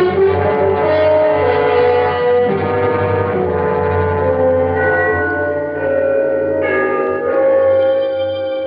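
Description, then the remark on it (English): The bells of Trinity church, at the lower end of a city, chime loudly and steadily for the three-quarter hour at a quarter to midnight, their rich ringing tones overlapping and sustaining throughout, with fresh strikes every couple of seconds. No voices are heard. “The bells of Trinity had just run the three-quarter hour.”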